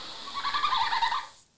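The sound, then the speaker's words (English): A small mammal's mating call, a high, rapid twittering with whistly, chirping notes, heard alone for about a second before it quickly trails off. “This is their mating call.”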